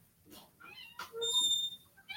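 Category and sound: animal, cat meowing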